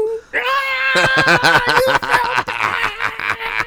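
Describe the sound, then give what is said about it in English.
A person sings about radioactive kitties in a rapid string of exaggerated, wavering cat meows, each syllable rising and falling in pitch, loud, after a brief sustained opening note. “This is gonna be one of our most downloaded episodes because you're singing about radioactive kitties.”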